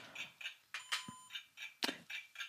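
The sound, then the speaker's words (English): A 10-second game timer for a round of naming cocktails beeps in a quick, steady rhythm, about three short electronic pulses per second, fairly faint, with a few brief bumps of background noise and no talking. “Get the timer going. You got 10 seconds.”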